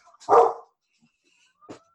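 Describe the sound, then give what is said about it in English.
A dog named Brutus lets out one loud, full bark, followed after a short pause by a second, fainter and briefer bark, with quiet in between and no talking. “You were going, you almost had it, and then your dogs had to go and cut you off.”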